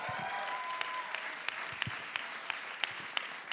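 A crowd applauds steadily, a dense wash of many hands clapping with a few sharper claps standing out, sustained at moderate volume throughout.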